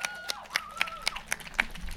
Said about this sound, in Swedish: Ge en jättestor applåd